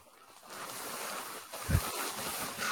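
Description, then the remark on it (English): Steady, airy rustling of a cheap polyester Pickle Rick costume as it is being unzipped, a continuous crinkly hiss of fabric shifting with a brief louder thump partway through, and no one speaking. “For the podcast audience to just hear the rustling of his cheap Pickle Rick costume.”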